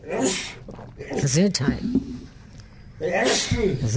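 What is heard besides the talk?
repeated sneezing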